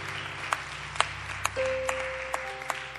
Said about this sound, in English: Why don't you clap your hands to the Lord?